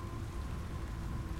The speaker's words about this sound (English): you think even through the rain and the thunder, you hear some shouts, perhaps, in the distance.